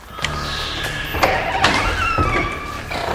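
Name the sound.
door being pushed open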